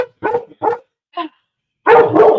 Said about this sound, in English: When he works up like that, it's from fireworks. Somebody must be shooting something off. I apologize for that. Come here, honey. Ty, come here. Come here. He's just going to sit there and bark.